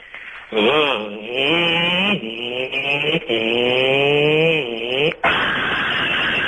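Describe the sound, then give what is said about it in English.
A voice imitates a motorbike crash: a buzzing engine whine rises and falls through several revs, then breaks into a short, harsh burst of crashing noise. “That's a motorbike crash.”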